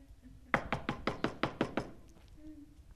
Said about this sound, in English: But the wife and I will be asleep, and we'll get the knock on the door. And we, like, just ignore them. They'll go away.